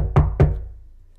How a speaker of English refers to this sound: He knocked again. He knocked again, louder this time.